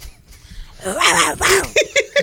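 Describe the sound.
A person imitates a growling hog with two raspy, strained vocal bursts, fairly loud, ending in a few short choppy grunts with a comically squawky, cartoonish edge likened to Daffy Duck.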